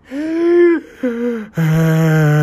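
Abnormal, strained heavy breathing: three loud, drawn-out voiced breaths with a moaning, groan-like tone, the last one lower and rougher, with no words spoken.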